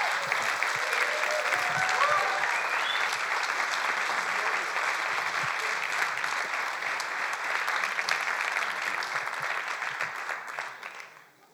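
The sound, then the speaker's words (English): A crowd at Bethel Atlanta claps steadily for about ten seconds, a dense, even patter of many hands with a few faint voices beneath, before the applause thins and fades out at the end. “And so just give another clap as life comes.”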